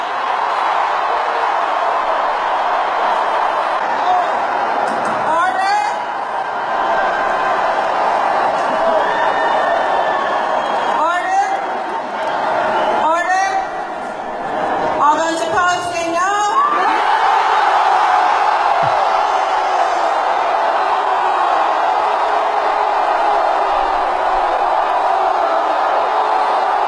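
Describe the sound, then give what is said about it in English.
A large convention crowd shouts in protest at a voice vote passing the temporary convention rules, a continuous loud roar of many voices with sharper individual yells and whoops breaking out above it in bursts, heaviest toward the middle. “They sound upset.”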